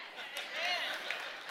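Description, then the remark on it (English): An audience claps steadily in a dense, continuous wash of applause, with a few whoops and voices rising through it, holding at an even loudness throughout. “Everybody clapping is a parent.”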